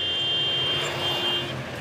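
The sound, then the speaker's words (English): Dense idling traffic in long lines of cars at a border crossing, on the Mexican side of the Bridge of the Americas, fills the scene with a steady engine rumble and hiss, while a thin high-pitched tone whines continuously through most of it. No one speaks. “On the Mexican side of the Bridge of the Americas, lines of cars stretch far into the distance.”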